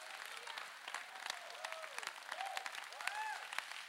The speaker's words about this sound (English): Give the Lord a clap.